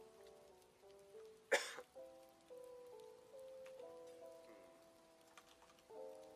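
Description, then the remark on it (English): A single short, stifled cough bursts out near the start, loud against a quiet backdrop of soft, steady electronic tones. No one speaks. “I have to pause here because if I say something, I'm just going to cough.”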